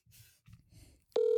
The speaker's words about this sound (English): So I'm going to phone her right now.